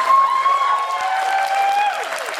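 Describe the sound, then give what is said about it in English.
A crowd of about 400 people applauds and cheers steadily at James Coleman's swearing-in as mayor in South San Francisco's new library, which doubles as the city council chamber. Dense clapping, with sustained whoops or a whistle-like cry rising above the noise. “But last December, when James Coleman was sworn in as mayor, the place was buzzing with a huge crowd eager to welcome him.”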